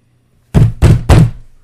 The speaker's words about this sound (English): My mother knocked on the door.